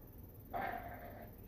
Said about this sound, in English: Starts growling. Oh, has he already started becoming a werewolf then? Yeah. He's already gone through the change. Or he's going. So that's why he's so mad right now?